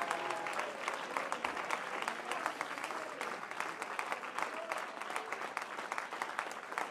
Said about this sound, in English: Come on, clap your hands unto the Lord and give him praise.